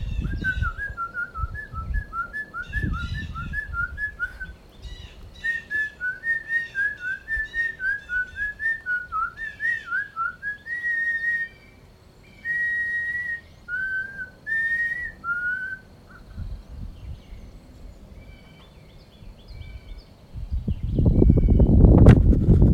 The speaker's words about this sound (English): Now, it seems like these birds are answering themselves. They're like having a conversation.